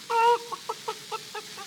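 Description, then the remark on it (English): A hen clucks: one drawn-out call followed by a quick, steady run of about six short clucks, with no talking and a quiet background. “And mother hen says, cluck, cluck, cluck.”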